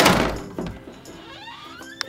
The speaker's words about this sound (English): When I close one of the doors, another one in the house opens on its own.